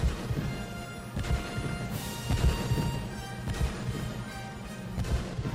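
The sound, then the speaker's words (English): Five heavy cannon shots boom out one after another, spaced irregularly over a loud, sustained full orchestra playing underneath. No voices. “Then we hear five cannon shots.”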